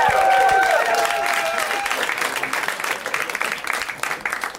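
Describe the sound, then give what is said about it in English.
A comedy audience applauds a comedian after his set, loudly with dense, steady clapping and a few cheers or whistles at the start, the applause gradually thinning and growing more scattered as it fades. “Keep it going for Will, you guys. Let him hear it.”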